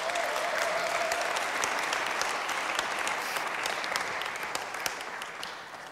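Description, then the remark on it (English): Steady audience applause for the treasurer being invited up fills the whole stretch, a dense patter of many hands clapping at even loudness that eases off slightly toward the end, with no voices on top. “Give Keith a round of applause.”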